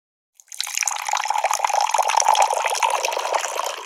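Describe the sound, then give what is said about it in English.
Water pours steadily into a glass, a continuous splashing, gurgling stream that begins after a brief click and runs unbroken to the end, with no voices. “Can you please pass a glass of water?”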